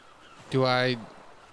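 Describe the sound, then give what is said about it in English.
One loud bird squawk as the bird opens its beak slightly and squawks in the listener's face, a harsh honking call lasting under half a second and standing out sharply against a quiet background. “And then once again, just kind of like squawks in your face.”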